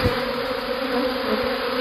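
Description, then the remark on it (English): A dense, steady buzz of a swarm of bees gathered on a house's front porch, picked up by a doorbell camera, loud and continuous with a slightly tinny, compressed quality; no voices. “Because this swarm of bees has decided to treat her front porch as their new hangout spot.”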